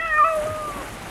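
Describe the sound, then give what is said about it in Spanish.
A single drawn-out kitten meow, clear, its pitch sliding gently downward as it fades over about a second against a faint background hiss. “El gatito ha bebido una importante cantidad de vino y con una mueca de alegría nos invita a girar el primer disco de esta jornada,”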